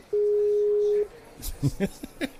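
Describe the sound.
One steady, European-style phone ringback tone, heard while placing a phone call, a clear single-pitched beep lasting about a second, followed by quiet; then people begin talking and shuffling.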